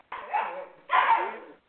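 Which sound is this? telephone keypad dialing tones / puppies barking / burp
puppies barking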